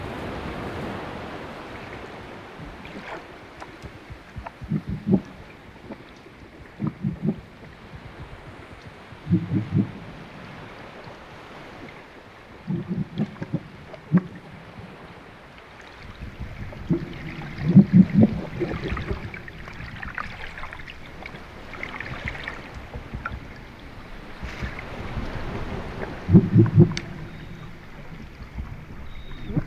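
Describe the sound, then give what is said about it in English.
Underwater recording of seals swimming: a steady muffled wash of water noise, broken by repeated low, churning bursts and swishes as the animals move. No voices are heard. “This recording is an underwater recording of some swimming seals.”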